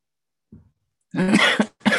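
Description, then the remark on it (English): A faint low throat sound, then two loud coughs in quick succession, the first harsh and drawn out, the second short and cut off, as someone settles in at the start of a morning guided breathing meditation. No one speaks. “Coughing a little bit, maybe yawning, stretching, settling in.”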